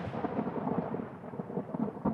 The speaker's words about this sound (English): were asleep in their small white trailer when a lightning storm exploded in the sky.